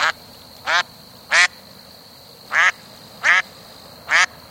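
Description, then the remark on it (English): A duck quacks six times in a loose, uneven rhythm, each call short, nasal and fairly loud, with a steady faint background hum and no talking. “Have you ever watched ducks walking around in freezing temperatures and wondered how they keep their feet from freezing?”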